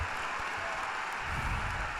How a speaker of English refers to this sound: Warm applause for Casper Ruud. He's won a lot of fans here with his passage through to the final.